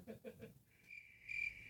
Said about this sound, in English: And then we have, hit me the crickets again.